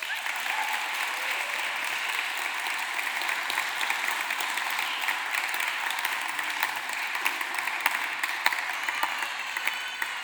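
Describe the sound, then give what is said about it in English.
Sustained applause from a sizeable audience honoring a speaker about to talk, a dense, steady wash of many hands clapping at once, fairly loud and continuous throughout with no speech over it. “So can I ask us just to do it in a cultural way that we would do, which is applaud.”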